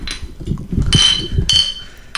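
Two bright clinks of glasses tapping together in a toast to Carl Castle, the late longtime scorekeeper on Wait, Wait, Don't Tell Me, one after the other with a short ringing tone, over a low rumble of background noise and no talking.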